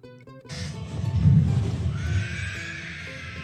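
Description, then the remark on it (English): A voice imitates the screech of a Ringwraith, the Nazgul from The Lord of the Rings: one harsh, raspy shriek that rises and holds for about three seconds, loud and alone, with a shrill high edge that thins toward the end. “This one is the sound in Lord of the Rings of the Nazgul.”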